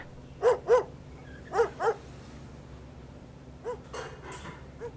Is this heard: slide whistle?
no